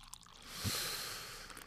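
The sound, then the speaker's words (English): A CC Brewing drink is poured, a steady hissing, foamy stream lasting about a second before it trails off, with no talking. “Let's go ahead and pour this thing up so we can get this thing started, all right?”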